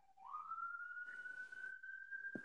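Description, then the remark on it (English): A studio siren, not a real emergency, signalling that the show is about to close: the wail sweeps upward and then holds one steady, high-pitched tone, with a burst of hiss in the middle and a brief thump near the end. “Ladies and gentlemen, if you hear sirens, don't mind it.”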